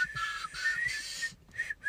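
A person whistles a short, simple tune, the breathy notes shifting pitch in a few quick phrases with brief pauses between them.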